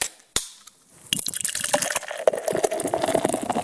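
A sharp pop like a can or bottle being opened, followed after a pause by beer pouring steadily and gurgling, with no one speaking, at a tap house in Montreal.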